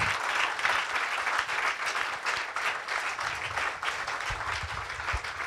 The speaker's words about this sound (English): Est-ce qu'on peut applaudir la présence de Dieu ce matin? Est-ce qu'on peut applaudir plus? Oh, can we clap louder? I'm sorry. Louder than that, louder than that.